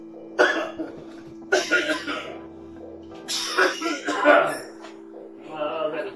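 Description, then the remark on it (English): Heavy, harsh coughing from a man after taking a dab hit, coming in four rough bursts over a few seconds, with the longest, most violent fit in the middle and a weaker hack at the end. “Just coughing up his lungs, you know.”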